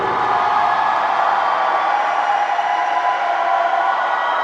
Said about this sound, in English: There was a tremendous uproar of applause and paw stamping. Their excitement and jubilation brought a smug smile of glory to Ahriman's face.